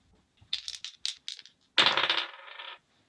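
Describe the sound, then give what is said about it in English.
Dice rattle in a cup with a few quick shakes, then spill and clatter across a hard surface in a bright burst that skitters to a stop. “If you get enough points to beat this dice roll.”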